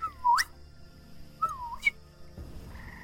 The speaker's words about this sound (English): He just keeps walking, crunch, crunch, and then he whistles. And he continues walking. And then you hear another whistle.